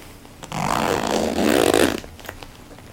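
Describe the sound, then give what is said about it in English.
A laptop bag's zipper is pulled open in one continuous rasping stroke lasting about a second and a half, its buzzy texture rising slightly in pitch before stopping abruptly, with no one speaking. “Oh, I unzipped it.”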